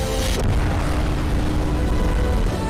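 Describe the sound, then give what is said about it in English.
A rocket's main engines ignite in a sustained, heavy rumble, loud and steady throughout, with dense low-end roar and a brief hiss of higher noise at the start, in a cinematic sci-fi trailer. “Main engines go. Ignition.”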